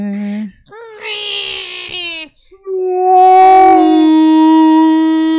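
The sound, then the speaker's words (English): A person's voice imitates a dinosaur roar with long, drawn-out, howling tones that waver in pitch, loud, in a few sustained bursts with no other talking. “That's a whale.”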